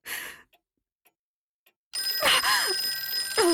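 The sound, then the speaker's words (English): A telephone bell rings in a short burst, then goes quiet apart from a few faint clicks before ringing again loudly and steadily until the end. “If you don't stop ringing me, I'm going to call the police.”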